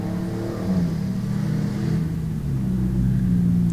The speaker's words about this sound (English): Hear these cars come by. Well, that's what you get when you get an amateur podcaster like me. You get a car come by every now and then.